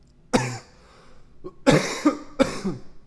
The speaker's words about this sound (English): I'm coughing from ripping this, the pod.